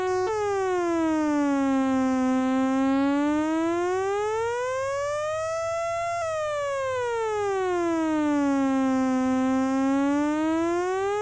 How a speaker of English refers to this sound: For example, here is an audio sawtooth wave whose frequency will now be controlled by a sub-audio sine wave.